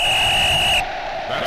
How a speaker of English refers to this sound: Well, you can't miss that. You should know that whistle by now. It tells us it's time for the two-minute drill.